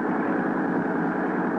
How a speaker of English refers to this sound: Then 6, 8, 10 minutes later, however long it took to get the speedboat overside, the first mate and I were tearing across the ocean in pursuit of the cruiser.